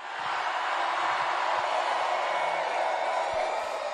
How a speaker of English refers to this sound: All right, very good. People cheering.